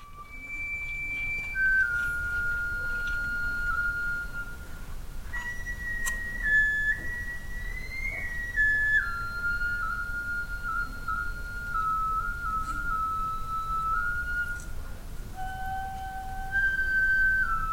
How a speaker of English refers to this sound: And over the course of maybe about a half an hour or so, we watched an entire ceremony happen, including some really beautiful flute music.